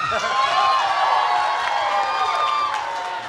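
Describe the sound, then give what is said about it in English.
A crowd bursts into sustained applause mixed with cheering and high-pitched whoops, a dense, loud wash of clapping and voices that holds steady throughout. “We have clap all for him again.”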